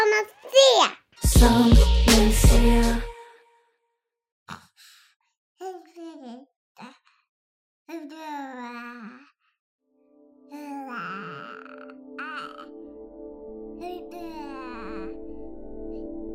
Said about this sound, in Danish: Sådan her begynder sproget. Lyder og toner strømmer ud af en baby i en stor pærevælling. Eller sådan lyder det i hvert fald. For det er kun nogle af sproglydene, babyer kan producere i begyndelsen.